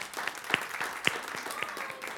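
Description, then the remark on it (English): A small audience claps together after hearing it is their first silent auction, a dense patter of hand claps with a few sharper, louder ones standing out, continuing steadily without voices. “Yeah, we can clap to that.”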